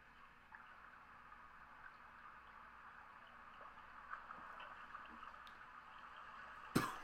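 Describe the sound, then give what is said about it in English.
A small water-driven generator, fed from a very small stream through an orange hose and redesigned with magnetic force, spins steadily: a continuous watery hiss and low whir with scattered faint ticks and one sharper click near the end; no one speaks. “So now this thing's getting powered by water and it's getting double the output because he redesigned it with magnetic force.”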